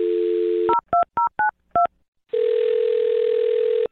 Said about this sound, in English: Okay, I'll dial his phone number right now, okay? Here we go.